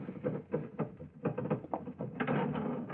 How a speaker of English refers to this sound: I must speak to him again about this elevator door. Sticks something terrible.